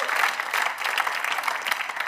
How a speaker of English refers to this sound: Amen. Come on. Give the Lord a huge round of applause.